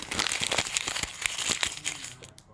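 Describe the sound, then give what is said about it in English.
A bag of kettle-cooked potato chips crinkles and crackles continuously for a couple of seconds during a snack break, a dense, bright rustling with sharp little crunches, fading out at the end. No one speaks. “I had kettle-cooked potato chips.”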